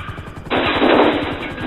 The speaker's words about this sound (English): Hold on. The car is turning onto Miyagani Bridge. Gordon just fired. He hit the tire.